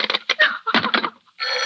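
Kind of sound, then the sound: household object, telephone ringing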